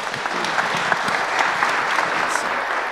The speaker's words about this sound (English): Can we give those guys a round of applause?